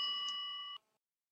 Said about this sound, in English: I was unsure why the television was on, but I answered the phone on the second ring and spoke as if I had been awake for hours.